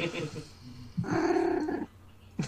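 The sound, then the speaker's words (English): A cat named Chewie lets out a drawn-out, harmonic yowl lasting about a second, loud, with brief murmurs of voice before it and a short sound at the end. “Well, I guess that your cat agrees there”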